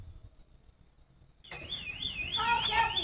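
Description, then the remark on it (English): An electronic alarm in a video being played abruptly starts wailing partway through, a loud, high warbling tone that rises and falls over a murky background of low rumble and indistinct voices. “Yeah, you might want to bring the volume down, too, because there is an alarm going off.”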